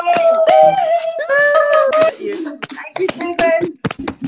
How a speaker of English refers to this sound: Everybody, unmute yourself and give a round of applause, please. Give a round of applause. Yay!